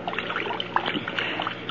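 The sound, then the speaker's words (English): A body is dragged slowly by the arms to the edge of a trickling stream and left face down in the water, with steady water sloshing and babbling and a few small splashes rising out of the flow. No one speaks. “His face is in the water.”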